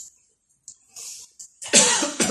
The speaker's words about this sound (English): Oh, man, that cough just knocked my thought out of my head.